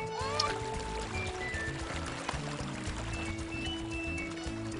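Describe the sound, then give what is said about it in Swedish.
Water gushes and pours out of a freshly dug hole in a steady, continuous rush, fairly loud, with faint musical tones running underneath for the whole stretch. “Och det kommer att bli mycket mer vatten om ni väljer mig till er nästa borgmästare, mina vänner.”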